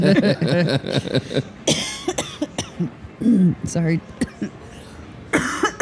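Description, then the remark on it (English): A loud coughing fit in a few harsh bursts, mixed with a man's speech and laughter, with one last cough near the end; the coughing is set off by laughing at a funny mental image. “I had a mental image and it was funny. And that made me cough.”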